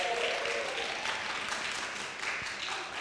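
A crowd applauds steadily, dense overlapping claps forming a sustained, even wash of sound that holds at a constant loudness throughout.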